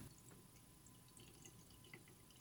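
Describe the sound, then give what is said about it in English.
Liquor, about a shot and a half, pours softly down the side of a glass so it won't mix: a faint, steady trickle with small drip-like splashes and light clinks near the top of the sound, continuous with no talking. “Now, if I strategically pour on the side, it shouldn't mix.”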